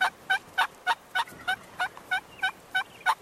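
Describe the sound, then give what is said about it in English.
A wild turkey hen yelps in reply to a tom during the spring mating season: a steady run of about eleven short, evenly spaced, clear calls, with no other sounds around them. “If he's lucky, a hen might yelp in reply.”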